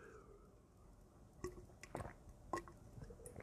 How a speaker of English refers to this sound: Pardon my drinking. It's water, by the way. Water.